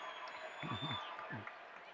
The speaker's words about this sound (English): Crowd cheering on a little bit of a surge here by the Jazz.